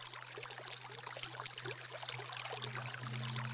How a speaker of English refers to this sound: This is a combination of some flowing water sounds, binaural beats, and then some music